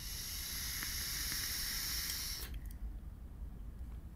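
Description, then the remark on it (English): A steady, airy hiss with a faint sizzle runs for about two and a half seconds of a restricted lung draw on a vape tank with very tight airflow, then cuts off, leaving low background rumble. “Almost mouth to lung it, but it's meant for a lung. It's just a very restricted lung hit.”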